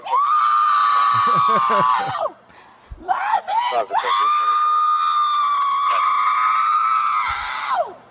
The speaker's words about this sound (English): All right, so she started screaming like a child.